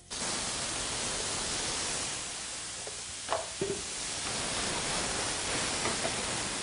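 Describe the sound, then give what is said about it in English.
Tomatoes thrown into a hot sauté pan of golden sautéed garlic sizzle, a steady, loud hiss throughout with a few brief pops and clicks around the middle. No one speaks. “Now we're going to throw in our tomatoes.”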